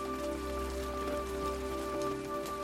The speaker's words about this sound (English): The raindrops patter softly against the bedroom window. The rhythm of this early morning shower is the first thing Lily hears as her mind drifts from dreams to wakefulness.